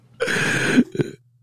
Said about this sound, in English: I've been holding that cough in the whole episode.